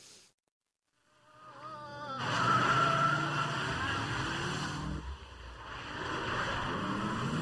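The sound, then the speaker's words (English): A car engine revs up and roars as it accelerates hard during a test drive, with a brief high tire squeal as it skids, loud, and the engine noise stays heavy to the end. “This is for real. This is a test drive.”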